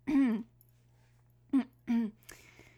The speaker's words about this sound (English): excuse me, I had to clear my throat a little bit.